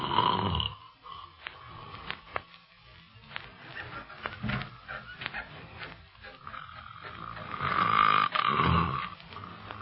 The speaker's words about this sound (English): The way he snores, you should be glad he's in another room.